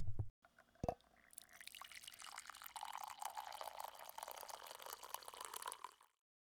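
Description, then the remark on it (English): Coffee being poured into a cup, a steady splashing stream lasting several seconds after a couple of brief clinks of the cup being set down, moderately loud with no voices. “So let's pour a cup of coffee and have a chat”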